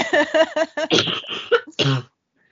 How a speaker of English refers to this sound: As we're both just like dying. Okay. Oh, you're having like... To be fair, I choke on my own spit a lot.